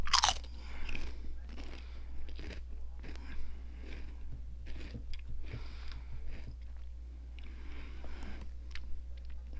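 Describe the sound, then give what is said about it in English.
Crisp crunching of someone chewing chips, with repeated bites and mouth noises in an irregular rhythm over a low steady hum. “I'm sorry if you don't like chewing or sipping noises.”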